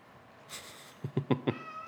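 A male cat meows insistently, a drawn-out cry followed by a quick series of three or four short, sharp meows, moderately loud with no talking over it.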